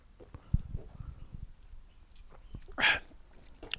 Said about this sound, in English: I'm going to give, let me do another little sip. Let me see.